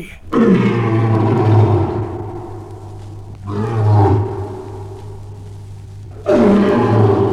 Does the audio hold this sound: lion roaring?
yes